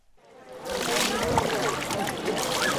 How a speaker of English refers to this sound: Millions of Hindus splashed into the Ganges River this winter as part of the world's biggest Hindu gathering, the Kumbh Mela, which for centuries took place in a city with a Muslim name, Allahabad.